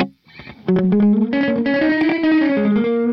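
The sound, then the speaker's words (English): An electric guitar plays a short run of sustained, slightly gritty notes, each followed by a quick slapback delay echo, with the reverb turned off. Fairly loud and heard alone. “You hear the two for sure, though. The little slap, yeah.”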